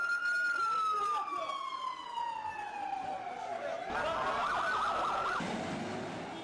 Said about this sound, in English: Now I hear the ambulances running.